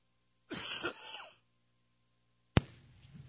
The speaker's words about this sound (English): I will survive. Just keep coughing. You got some? Yeah. Yeah, that probably will help. I haven't been coughing the last couple of days, so I probably that pumpkin bread. So I got a crumb down there somewhere.